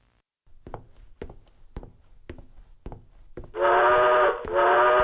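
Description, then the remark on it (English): A steam train chugs with steady, rhythmic puffs, then a loud, sustained whistle blasts, dipping briefly before sounding again. No one speaks. “What is that metal monster? Relax. It is a train.”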